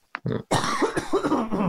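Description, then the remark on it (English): A person coughs: a quick catch in the throat, a short cough, then a longer, harsh, raspy coughing fit with no talking. “At some point, I was just coughing.”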